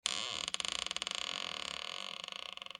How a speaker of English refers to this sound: While getting a drink of water, she hears the door to her apartment slowly creak open.